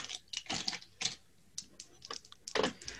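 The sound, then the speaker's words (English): Physical dice clatter down through a dice tower in a quick, uneven burst of hard plastic clicks and rattles, fairly quiet, with no talking over them. “I'd prefer if you roll physical dice, please.”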